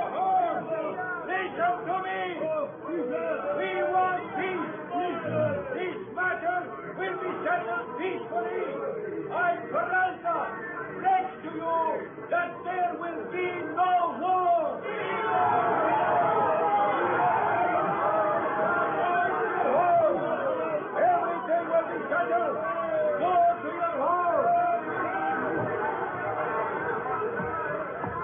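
An angry, shouting mob below a flag-draped balcony where a colonel tries to quiet them. A dense roar of many overlapping voices churns steadily, then swells louder and more heated about halfway through, with no single voice standing out.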